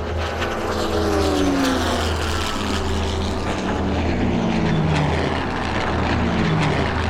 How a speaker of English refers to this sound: Let me try to pull alongside her so you can get a shot. My plane is old, but she still has a few tricks up her sleeves.